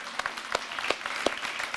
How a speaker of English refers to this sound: Can you clap and can you amen that?